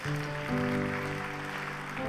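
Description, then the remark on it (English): A church audience claps steadily and loudly throughout a morning service, applauding the Lord, a dense wash of applause filling the room, with sustained organ or keyboard chords holding underneath. “Give the Lord a big round of applause this morning.”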